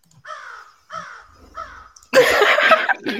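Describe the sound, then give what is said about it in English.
A crow-caw sound effect played from a soundboard: three caws in a steady, evenly spaced rhythm, each call harsh and nasal, followed by a sudden louder burst of rough, noisy squawking that fills the last second. “The crow is the best.”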